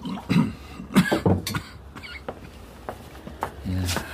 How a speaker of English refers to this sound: Have some water. Do your cough good. Nothing does my cough good. But yes, thank you, I will.